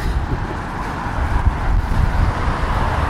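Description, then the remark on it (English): Steady low roar of road traffic mixed with buffeting wind while crossing a bridge, with Tower Bridge to the left; a continuous rumble with no clear breaks and no voices. “Well, we're crossing over the bridge now.”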